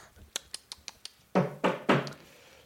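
knocking on the ceiling

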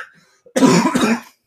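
cough

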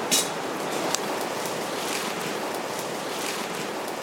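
river water flowing

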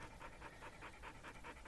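dog panting

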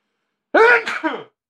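sneeze

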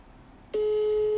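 telephone ringback tone

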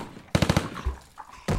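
gunfire

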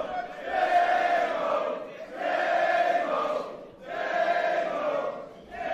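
wrestling crowd cheering

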